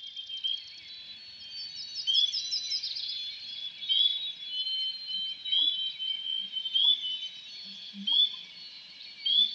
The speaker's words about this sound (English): The first sound that really stands out to me are those melancholy whistles, like this. They're from white-throated sparrows. Americans say the sparrows are singing, "Poor Sam, Peabody, Peabody, Peabody."